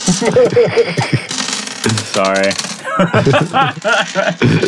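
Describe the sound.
Dice rattle and clatter across a tabletop in quick, uneven bursts of small hard clicks, mixed in with voices talking over them.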